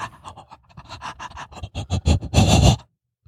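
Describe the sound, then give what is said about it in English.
A person pants rapidly like a dog, a string of short breathy huffs that grow louder and quicker, ending in a long, harsh exhale before silence. No talking. “Like a dog like panting.”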